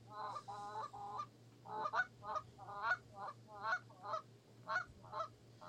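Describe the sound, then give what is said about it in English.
Geese honk repeatedly in a steady, overlapping chorus, clear, with a low constant hum underneath and no voices, heard from a goose blind during a goose hunt. “The Big Honker Podcast joins you in the goose blind.”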